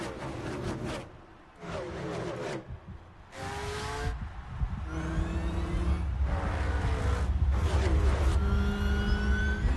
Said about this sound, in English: but you can go ahead and play it. There's a little, just mostly like car sounds.